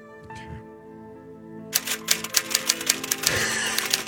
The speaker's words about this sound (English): Sorry, I'm typing up my resignation. Hold on just a second.